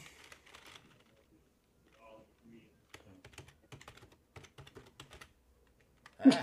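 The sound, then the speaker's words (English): A burst of typing on a computer keyboard: quick, irregular key clicks tapping away for a couple of seconds, after some brief rustling, ending with a louder thump. “You had typing like”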